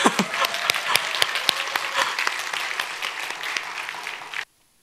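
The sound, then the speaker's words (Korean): An audience at the Toronto Korean Presbyterian Church applauds together to wish the young people well, a dense wash of many hands clapping with a few sharper individual claps standing out, steady for about four and a half seconds before stopping abruptly. “우리 그냥 청년들 잘되라는 의미로 박수 한번 칠까요?”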